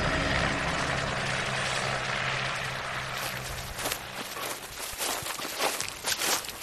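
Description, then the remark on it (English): A helicopter roars with a steady low rotor drone, then the engine noise gradually eases as it lands by an ancient ice patch, followed by scattered crunching footsteps as people scramble over to the ice patch. “The helicopter lands and we scramble over to the ice patch.”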